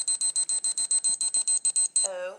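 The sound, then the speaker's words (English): A rapid, evenly spaced run of about a dozen high-pitched electronic beeps from a time machine, loud, like an alarm-style sound effect, cut off at the end by a brief voice. “Anyways, let's go back. Beep, beep, beep, beep, beep, beep, beep.”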